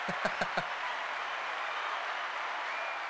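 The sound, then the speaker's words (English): A few sharp, distinct claps open into a steady wash of applause from a small group, sustained at moderate volume for a few seconds with no talking, a round of applause for a guest's first words. “Let's give her another round of applause for that.”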